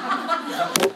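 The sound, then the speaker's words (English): A quick pair of flat, sharp slaps, like a hand smacking down on a book, lands fairly loud over a man's steady preaching voice. “I don't own Bibles here, so I got to slap on it again.”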